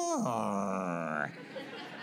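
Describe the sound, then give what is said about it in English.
A person imitates an angry cat's growl: one drawn-out, strained vocal snarl of about a second that dips in pitch and then rises into a rough wail before cutting off. “The hair on their backs and the ears, they pin those ears back. And then they get this sound.”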